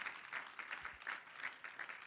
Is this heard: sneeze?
no